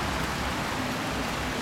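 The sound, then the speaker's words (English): Steady rain falls on a winter evening in London, outside a pub, in a continuous, even hiss, a dense wash of patter with no breaks and no voices, at a moderate, constant level throughout. “It was a pub in London, and it was a typically sort of rainy, miserable winter evening, and I think I was probably more horrified by the weather than anything else.”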